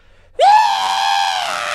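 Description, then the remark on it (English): A person imitates a moon dragon's screech: one loud, sustained shrill cry that swoops upward at the start and holds steady for over a second, with no other talking. “Oh, it screeches. It screeches. Hold on, do that again.”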